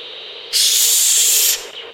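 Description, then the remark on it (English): A radio is switched on: harsh static suddenly surges to a loud, bright roar for about a second, then cuts back to a quieter steady hiss. No one speaks. “He moved to the far corner and turned on the radio. let out a deafening belch of static.”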